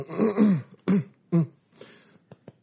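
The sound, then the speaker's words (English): A man clears his throat: a long rough rasp followed by two sharp guttural bursts, then a few faint clicks and small noises as it settles, with no talking. “Let me clear my throat.”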